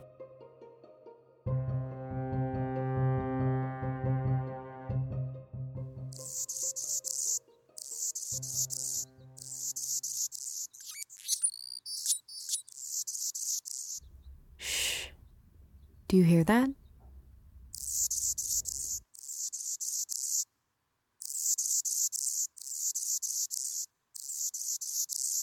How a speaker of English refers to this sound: That is the sound of the Anna's hummingbird, a small but mighty bird that has temporarily halted part of the expansion of the Trans Mountain Pipeline.